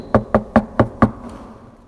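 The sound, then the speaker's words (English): Five firm knocks on the door of a house in a quick, steady rhythm, a man knocking, each a sharp hollow thud with a brief ring, followed by quiet room tone and no voices. “And so he goes up to the house and he knocks.”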